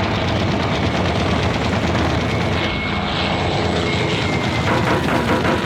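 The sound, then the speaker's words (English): Loud, steady roar of the engines of two approaching Messerschmitt 109 propeller-driven fighter planes fills the whole stretch, a dense droning rumble with no voices. “They're Messerschmitt 109s. Two of them.”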